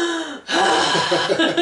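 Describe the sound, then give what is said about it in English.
A loud deep breath: a brief voiced intake, then a long, airy rush of breathing that fills the rest of the moment, with no talking. “So number one, they say to do some deep breathing. I'm a big deep breather.”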